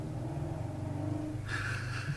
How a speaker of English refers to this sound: that sounded like a motorcycle in Buffalo. Yeah, it was a motorcycle.